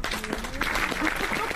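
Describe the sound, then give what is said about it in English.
A short burst of small applause: a light patter of scattered hand claps from a modest group, steady throughout, with faint voices murmuring underneath. “I've got a small applause. Will that do?”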